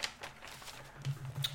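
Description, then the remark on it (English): Quiet rustling and light scratchy clicks as paper and a pen are picked up and shuffled, with a few soft taps scattered over a second and a half and no talking. “Get your paper and your pen out.”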